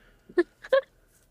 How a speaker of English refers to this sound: Duck quack.